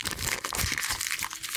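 A foil booster pack crinkles and tears open in a steady, bright crackling burst lasting under two seconds, with no voices.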